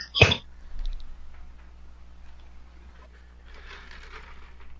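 A single short, sharp cough or throat clear right at the start, fairly loud, followed by quiet with some faint breathy rustling near the end.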